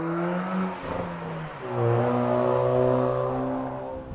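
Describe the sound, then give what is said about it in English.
A car engine hums and revs up, its tone rising steadily as it accelerates and holds a loud, sustained drone before easing slightly. No one speaks. “Excuse the car in the background.”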